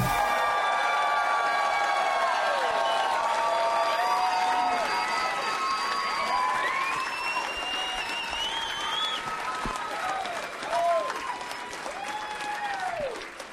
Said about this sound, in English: You guys were clapping so loud that nobody could even hear the theme song. That was pretty sweet